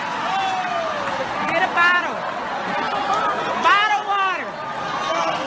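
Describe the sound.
A lively crowd fills the space with overlapping chatter and excited voices, with occasional shouts and whoops rising above the steady murmur of many people talking at once.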